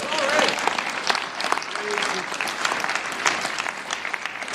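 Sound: audience clapping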